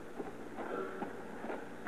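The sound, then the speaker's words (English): A train idles at a station, giving off a steady, quiet hiss over a low rumble, with faint tonal whines rising and fading. No one is speaking. “Oh, the train hasn't left. No, but we better be getting aboard.”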